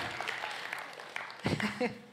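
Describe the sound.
A brief patter of audience clapping, a dense crackle of many hands that fades as a voice starts talking over the end of it.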